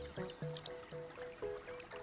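Gentle watery pond ambience in a Pikmin video game, with soft, tonal plinks and bloops repeating in a steady, lilting rhythm, like droplets falling into still water; quiet and continuous, with no voices.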